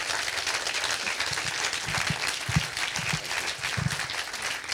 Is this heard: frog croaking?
no